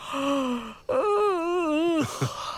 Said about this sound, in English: She also won herself a Perry for the Yawn of the Week.